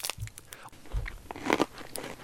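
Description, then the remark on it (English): Crunchy chewing of a Star Bar chocolate bar, with repeated crisp cracks and crackles as it is bitten and chewed, loud with no talking. “If you ever wanted to know what the noise of a Star Bar is like when you're eating it, here you go.”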